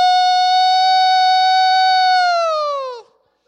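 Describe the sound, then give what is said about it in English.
A grandmother in church imitates a fire engine siren with her voice, one loud, sustained high wail that holds steady for about three seconds, then slides downward and cuts off. No one talks. “Then my grandmother gets started with her fire engine.”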